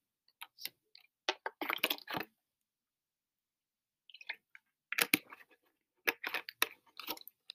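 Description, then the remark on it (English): Quiet drinking sounds of someone sipping iced tea: soft sips and swallows with small wet clicks and ice-like clinks, arriving in two clustered bursts separated by a brief pause, no talking. “So, yeah, I'm going to take a sip of my drink, and then I'll get back onto the topic, but I am very thirsty.”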